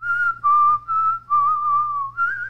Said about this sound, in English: Yeah, you're good at whistling.